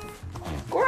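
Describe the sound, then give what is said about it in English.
A child gives a short growl imitating a dinosaur, a rough voiced rumble that rises in pitch and gets louder toward the end, lasting under a second. “Growl!”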